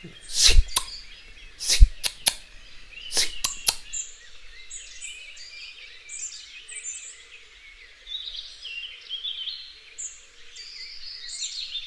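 A bird gives a series of sharp, clicking call notes in the first few seconds, irregularly spaced, while high chirps and twittering from birds carry on throughout at moderate loudness, with no talking.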